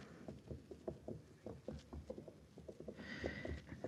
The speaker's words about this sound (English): Over there by the corral. You see? They're walking the horses into the yard. Slow and quiet.